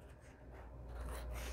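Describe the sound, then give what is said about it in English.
Soft, steady scraping of scissors slicing through material to cut off excess, a continuous rasp that grows slightly stronger toward the end, with no voices. “Just works a little better with the scissors.”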